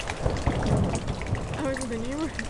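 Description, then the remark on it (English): Steady rain hisses and patters across the whole moment, a dense wash of drops, while a voice briefly murmurs over it near the end. “it's raining.”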